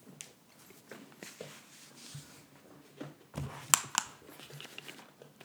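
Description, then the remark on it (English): A paper towel roll being fitted onto its holder: soft rustling and crinkling with small clicks and taps, then a brief louder clatter as the roll settles into place. “I used the last one, so I'm just putting another thing on the paper towel thing. Another roll of paper towel on the paper towel.”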